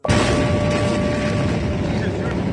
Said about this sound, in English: On this Tuesday night, an enormous explosion blasts through Beirut. Horrific disaster. Rubble everywhere. Buildings blasted open.